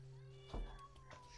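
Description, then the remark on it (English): A cat gives a single drawn-out meow, clear, with a sharp onset and a wavering tail, over a steady low hum with no talking. “There was a cat, Mike. I got that in.”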